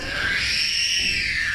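A person screams in one sustained, piercing, high-pitched cry that holds steady and loud for over a second, with a low rumble beneath it and no talking.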